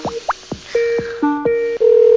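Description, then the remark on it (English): A phone being dialed to call back a random number that had called a cell phone: quick electronic chirps and short beeps, then held tones stacking up, ending in a loud, steady dial tone. Clear, with no one speaking. “We're gonna call him back, and we're gonna see just exactly who the hell this is.”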